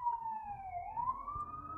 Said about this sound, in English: All right, we'll let the fire trucks pass before we go forward.